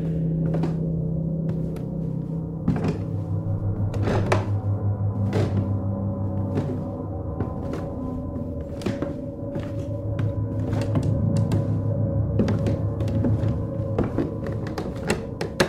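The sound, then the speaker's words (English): Slow, deliberate, heavy footsteps on stairs thud one after another at an unhurried, steady pace, each step landing clearly over a low, sustained droning tone that runs underneath throughout. “There's a thump at the bottom of the stairs. Footsteps. Slow, deliberate.”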